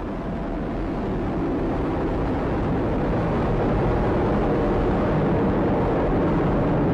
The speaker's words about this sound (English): The RD-180 is now throttling down as expected. Engine response looks good. We are now 33 seconds into flight. Atlas is 3 miles in altitude, 0.9 miles downrange distance.